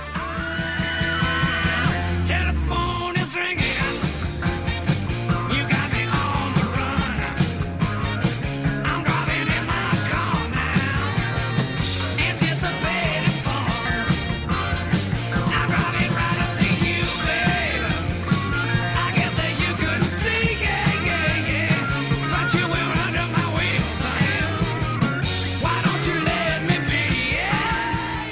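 A loud, driving rock song plays steadily for the whole stretch: a bass line climbs and falls under dense guitars and crashing drums, with shouted vocals riding on top and no talking.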